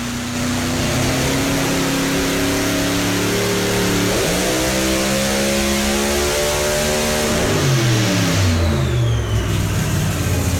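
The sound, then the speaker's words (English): A race car engine revs hard and loud, its harmonic pitch climbing and dropping through several gear changes with a screaming, musical tone and steady roaring volume throughout. “If you listen to this thing through headphones where you can really hear the motor, this motor, when he turns this thing loose, is the most musical sounding thing.”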